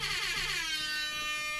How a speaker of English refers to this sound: Yes, for the last standard format episode, we brought our very own air horns. They're going off all show, guys.